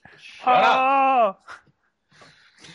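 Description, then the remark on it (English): A chair gives one long, groaning creak lasting about a second, loud and tonal with a slightly wavering pitch, followed by quiet bits of speech. “That's my creaky chair. It does sound like a pirate ship.”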